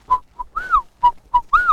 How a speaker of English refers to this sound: When they do go, they say their name, Whippoorwill, Whippoorwill.